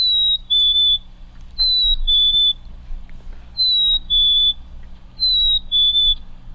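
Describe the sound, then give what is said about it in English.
A chickadee's clear two-note spring whistle, a higher note sliding to a slightly lower one, repeated four times at a steady pace over a low, constant background rumble. “I think that was the spring call of the chickadee, but...”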